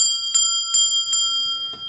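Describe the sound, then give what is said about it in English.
A bell rings steadily with a sustained metallic tone, struck about five times at an even, quick pace. It's clear, with no voices. “ring the damn bell! Ring him and that ding, bell.”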